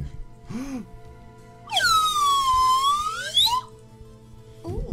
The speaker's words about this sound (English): The slide whistle, man. It's gone out of style, but I'm bringing it back.